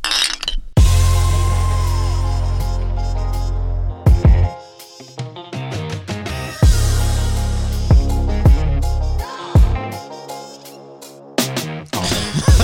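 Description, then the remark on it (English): Several bright glass clinks ring out at irregular intervals in a toast over a deep, booming bass bed, each strike sharp before its shimmering ring fades. No one speaks. “So cheers, and may we hold the truth most high and not avoid it no matter what the cost.”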